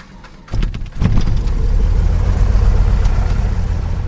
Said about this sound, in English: Malheur County rancher Bob Skinner starts the engine of his airplane.